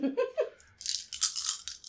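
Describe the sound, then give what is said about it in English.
A brief voice sound gives way to dice rattling and clattering, a bright, rapid flurry of hard little clicks lasting about a second, fairly loud and irregular in rhythm. “I don't even need to roll these dice, really.”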